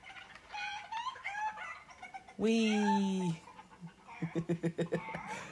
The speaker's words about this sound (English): More chickens! Exploding chickens.